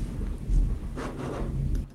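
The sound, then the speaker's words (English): A deep, rolling rumble of thunder swells early, then spreads into a broad crackling roar that fades slowly over two seconds. Steady wind-like noise sits underneath, and no one speaks. “Loud thunder here.”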